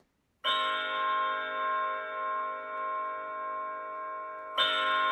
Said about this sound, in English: As we sat there by the open window, a nearby church bell was tolling a funeral knell.